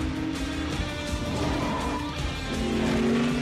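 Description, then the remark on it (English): Loud, continuous engine roar of race cars at full speed heading to the finish line, with rising and shifting tonal whines as they pass, and no voices. “Here come the cars to the finish line.”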